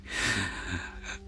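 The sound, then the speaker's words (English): A single sharp, hissing inhale sucked in through clenched teeth, lasting about a second, performed by a voice imitating a man's tooth gasp during sex, with no talking. “Not well, it wasn't sexy when he made those noises when we were having sex, but it was even less sexy because he used to like do the tooth gasp, the and I used to just be like, I didn't want to say anything.”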